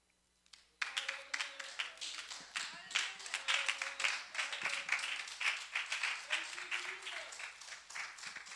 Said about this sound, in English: We can stand up and just clap for Jesus. Hallelujah. Come on, let's do it.